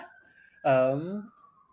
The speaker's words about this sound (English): Sorry for like the sirens that are in the background. That's okay. If you hear that.